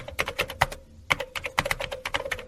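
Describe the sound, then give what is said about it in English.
Rapid clicking of keys on a computer keyboard in an irregular stream of taps with a brief pause partway through, no voices present. “That's me typing.”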